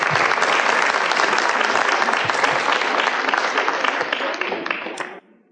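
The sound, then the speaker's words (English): Audience applause for the nursery children after they performed Away in a Manger, a dense, steady wash of many hands clapping at once that holds strong for about five seconds before tapering off and stopping abruptly. “Let's give our nursery a round of applause one more time.”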